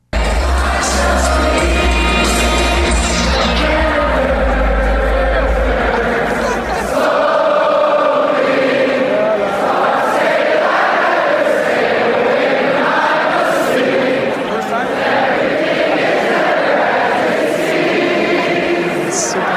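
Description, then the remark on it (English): A huge stadium crowd, a full student section, sings together in a loud, sustained roar of massed voices, with scattered shouts and whoops rising over it and a deep rumble during the first few seconds; the people around the recorder are not singing. “You know what's weird about this clip, though, is that you can hear the stadium, but the people that are around, whoever's recording it, isn't singing it at all.”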